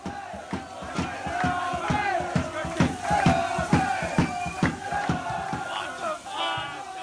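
Supporters shouting from the stands at the Shed End: a loud, sustained roar of many male voices bellowing together, with rhythmic bursts and sharp accents punctuating the crowd noise throughout.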